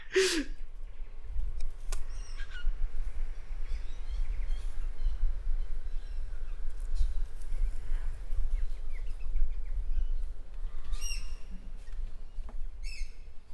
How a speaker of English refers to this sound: Cue sound of birds, I guess.